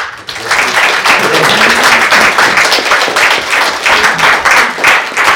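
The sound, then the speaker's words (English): Sustained audience applause thanking the guests at the end of a literary evening held with the Czech Literary Centre and the Moravian Library, a dense, steady wash of many hands clapping at once, loud and continuous throughout with no voices standing out. “I think the applause just confirmed what I felt during the evening.”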